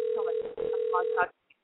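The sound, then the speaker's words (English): A steady telephone ringback tone hums through a narrow, phone-quality channel as a person dials out a call and talks over it, then cuts off abruptly after about a second. “All right, dialing his number.”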